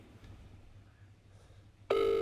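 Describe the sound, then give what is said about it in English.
A phone dialing tone on speakerphone cuts in abruptly near the end, loud and steady, after a stretch of quiet room hum. “Who are you phoning? The guest one, like. Put him on speaker.”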